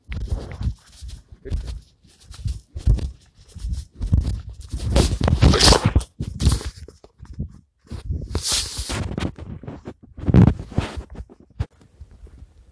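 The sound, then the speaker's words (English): Dogs bark in scattered, uneven bursts as a woman walks down the road past the house, a few louder outbursts standing out amid shuffling and thumping movement noises, with no talking. “I just had to go holler at my dogs”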